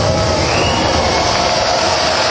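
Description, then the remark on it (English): A thunder and rain sound effect played at an indoor concert while stage lights shine and flicker: a loud, steady wash of hissing rainfall with a low, rolling rumble underneath, continuous for the whole stretch with no voices. “Shining, flickering, as you hear thunder and rain.”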